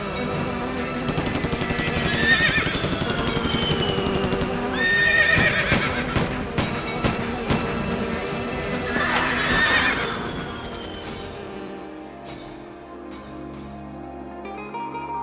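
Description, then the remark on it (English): A horse whinnies loudly three times over rapid, pounding hoofbeats, with sharp gunshot-like cracks mixed in, before the galloping fades into a softer, quieter stretch near the end. “For 40 minutes, she raced ahead of that gunslinging winged stallion, bursting through birds and anything else that got in her way.”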